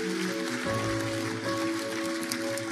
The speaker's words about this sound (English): Come on, let's give them a big hand clap of praise.